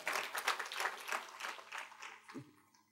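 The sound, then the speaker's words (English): A large audience applauds in a steady, dense burst of many hands clapping together, holding for a couple of seconds before quickly tapering off into quiet. “That's a good place to applaud right there.”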